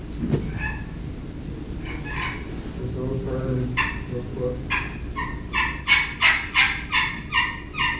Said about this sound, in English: It's a soft putt and purr. Brad does a real good job of doing soft calling stuff on the slate.